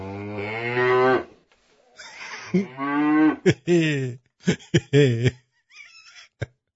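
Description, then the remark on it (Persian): Cows on a cattle farm moo several times in a row: a long drawn-out low call, then a cluster of shorter, overlapping moos. The calls are loud, with a brief pause between. “آکسفورد حالا نگید، آکسفورد یعنی گاوداری.”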